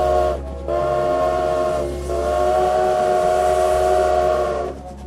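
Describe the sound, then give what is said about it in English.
A loud, sustained train whistle blows in three long blasts with short breaks between them, over a steady low mechanical rumble of a passing train. “You know what that noise was. It was a train.”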